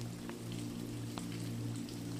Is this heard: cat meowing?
no